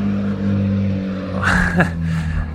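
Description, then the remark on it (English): A car engine rumbles steadily on a quiet street at night, past 10:30 p.m., then its exhaust roars louder in a brief revving surge before settling back into a low idle drone. “Wow, there's some exhaust.”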